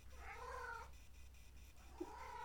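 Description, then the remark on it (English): A female cat lets out two drawn-out, wavering cries, one at the start and another near the end, with a quiet pause between them and no talking. “You know, you're a cat.”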